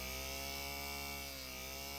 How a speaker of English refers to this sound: And he's going to rev it up. Wow, man. That sounds better than my car. That's a little Lego engine. So it says the creator mentions the crankcase is a 3D printed part.